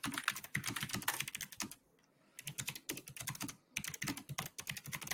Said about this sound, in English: I'm angry typing. Don't worry.